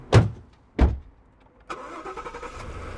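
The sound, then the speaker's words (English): Two heavy thuds, then an armored truck's engine starts up and settles into a steady, rumbling idle. No one speaks. “Hop aboard my enchanted armored truck.”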